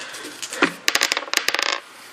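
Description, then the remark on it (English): Four dice clatter across a hard tabletop in a quick burst of sharp clicks, rattling and bouncing for about a second before settling, rolling a total of 20. Fairly loud, with no voices. “Even on 4 dice, you roll 20.”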